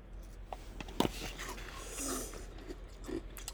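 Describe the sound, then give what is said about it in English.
Crunchy shaved ice from Bahama Bucks being chewed, with a few sharp crackling bites, one loud snap near the start, over a low steady background hum. No one speaks. “Hear that? That's not smooth. So crunchy.”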